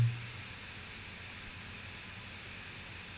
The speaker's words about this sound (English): The mind should be focused on the sound of the breath or the sensation of the air entering into the nose. So as you're breathing in, you should hear that sound and focus the mind on the breath.